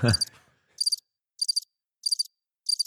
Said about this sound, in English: See, equal opportunity crickets, people. I'll cricket myself. I'll cricket anyone. He'll cricket anyone. Anyone who deserves it.